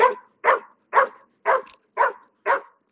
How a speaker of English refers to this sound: No, wait, there's a bunch of dogs over here. Have to hold his leash on tighter. This is like the worst part of walking my dog. Because I don't know if these dogs are friendly.